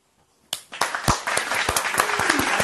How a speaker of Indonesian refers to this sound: Untuk itu, kita ramai-ramai ingin memberikan satu tepukan yang paling gemuruh lah, teman.